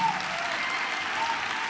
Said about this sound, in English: My Lord, let's clap our hands and give Him praise again.